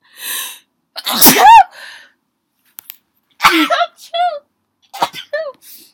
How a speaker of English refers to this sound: Wait, I gotta sneeze.